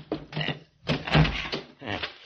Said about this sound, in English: Can you get that door open? Oh, it's pretty well banged up. I think I can handle it.